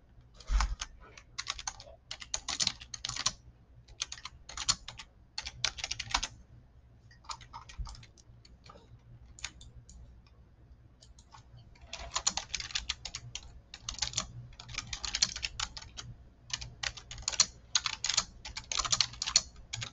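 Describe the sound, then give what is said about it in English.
Rapid typing on a computer keyboard in bursts of clicking keystrokes, fairly loud, pausing briefly in the middle before resuming more densely, with a low steady hum underneath and no voices. “Was typing.”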